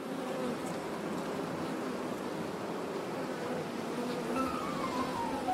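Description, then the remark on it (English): A dense, steady drone of many bees buzzing, a continuous humming swarm with occasional individual bees whining past, filling the whole stretch with no voices. “I could talk about bees for days, literally days.”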